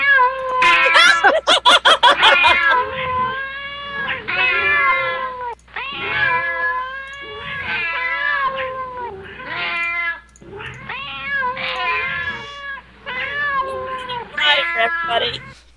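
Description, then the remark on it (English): Several kittens meow almost nonstop for the whole stretch, their high, wavering cries overlapping one another, with a brief rough, scratchy burst near the start. “Oh, here they are. Come on.”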